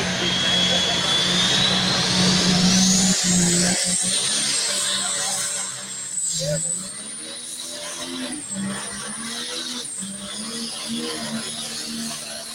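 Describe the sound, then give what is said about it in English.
A loud pro stock drag racing car engine roars, its pitch climbing in a rising whine before settling into a rough, throbbing idle, with faint voices in the background; run at a drag racing track for hometown fans on a Saturday night. “He breaks out the pro stock for the hometown fans.”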